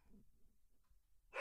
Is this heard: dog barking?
yes